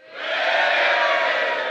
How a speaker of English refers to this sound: Good, what a crowd. This is unbelievable. Make some noise.